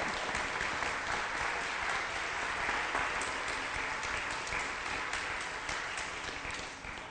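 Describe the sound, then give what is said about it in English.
Sustained applause from a church audience welcoming a new pastor and his family, a dense crackle of many hands clapping steadily for several seconds at an even, fairly loud level, with no voices standing out. “That may be the most applause I'll get for a while.”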